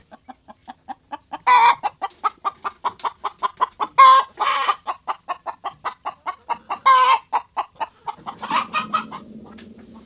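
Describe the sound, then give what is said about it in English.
Chickens cluck in a quick, steady run of short pulses, broken now and then by louder, harsher squawks, with no one talking. “And, you know, chickens are tropical birds. They would rather be a little warmer than colder.”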